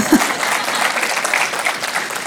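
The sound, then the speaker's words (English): A burst of steady applause from a group of people, dense overlapping claps at an even level throughout, with no voices standing out. “Yeah, give him a clap.”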